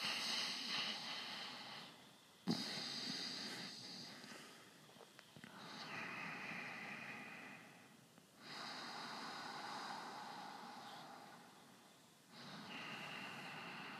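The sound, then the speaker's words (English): Slow, steady ujjayi ocean breathing through the nose: long hissing, wave-like breaths rising and falling in about four cycles, each a broad soft rush with brief pauses between, and no talking. “Also known as the ocean breath, because it's like waves.”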